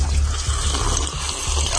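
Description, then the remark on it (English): Water pours steadily into a tank, a continuous rushing, bubbling flow with no voices, holding an even level throughout. “this thing is Prepare to Drown. This looks crazy. Like, it just starts filling up.”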